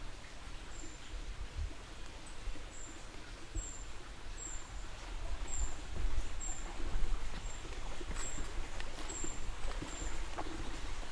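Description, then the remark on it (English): A brown creeper gives thin, very high-pitched calls, a dozen or so short notes at a steady pace, fairly faint over the constant loud rushing wash of a flowing creek. “That I think is a brown creeper, very high pitched right now.”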